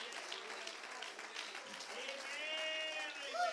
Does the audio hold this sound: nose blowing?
no